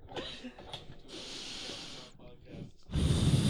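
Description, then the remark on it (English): Heavy, deep breathing from a person vaping: a long hissing exhale, a short pause, then a loud, rushing blow of vape breath. “Her deep, heavy breathing because she horny. It's not horny, I vape.”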